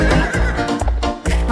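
A horse neighs loudly, a brief whinny broken into a few shaky bursts with a low rumble beneath, and no one speaking.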